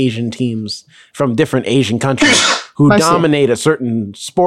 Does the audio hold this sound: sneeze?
yes